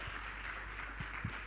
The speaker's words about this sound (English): All right, now listen, tonight we've got a wonderful program of amazing performances, and we are going to be hearing a lot more from that fantastic choir, …. A round of applause for them.